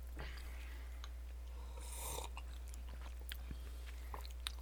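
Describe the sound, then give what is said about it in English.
Crunchy chewing of buttery nuts, with a steady series of crisp bites and grinding mouth sounds over a low background hum, no one talking. “But once you get to know them, they're kind of interesting. Kind of buttery? Full of butter. They're nuts.”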